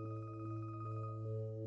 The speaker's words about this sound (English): She scowls at the muffled chiming ringtone. She doesn't know where the thing is.